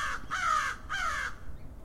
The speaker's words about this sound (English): Barely ever get good, clean, like up close audio like that of crows. This is nice because the wind's blocked here.